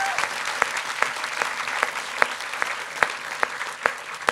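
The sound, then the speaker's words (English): An audience claps steadily in a round of applause for a man, a dense wash of many hands with a few sharper, louder claps standing out at a regular pace. No one speaks over it. “Round of applause for this so man here.”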